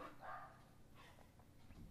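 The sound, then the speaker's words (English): A dog named Bosworth barks a couple of times in the background, the short muffled barks quiet over a low room hum. “So as you sit here and continue listening and hear Bosworth bark in the background, ask yourself this question.”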